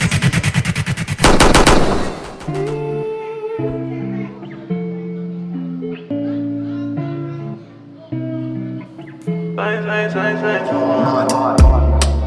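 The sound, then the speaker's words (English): A loud, rapid burst of machine-gun-style gunshot sound effects opens a dancehall track, gives way to a steady musical beat, and then more rapid gunfire returns near the end over the music. “Million gunshot.”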